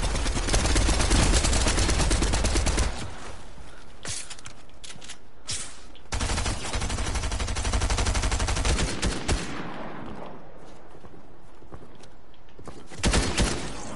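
Loud, rapid bursts of video game gunfire crackle in dense volleys, pausing briefly before erupting again, with a final short burst near the end and no talking.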